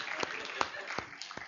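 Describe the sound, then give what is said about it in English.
A handful of scattered, slow hand claps sound faintly at irregular intervals over a soft background hiss, more a sparse smattering than a full crowd's applause. “I think you need a big round of applause for the work that you did with pulling that down.”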